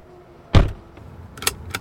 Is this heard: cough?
no